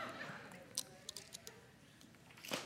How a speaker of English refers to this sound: I'm gonna just take a sip of water and you just read that.